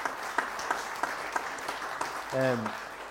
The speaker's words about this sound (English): Wee round of applause would be great at that point, wouldn't it?